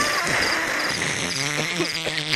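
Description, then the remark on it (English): A cricket chirping sound effect played back, a steady, high-pitched trilling that continues throughout, fairly loud, with a faint voice-like murmur underneath partway through. “I was playing crickets because it's funny because it's me who controls it.”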